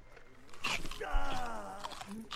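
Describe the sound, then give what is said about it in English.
Crunchy bites of a food that looks like a sausage, eaten by Michelangelo in a movie, a few sharp brittle crunches, with a drawn-out groaning voice in the middle. “It looks like a sausage, and it's making a crunching noise.”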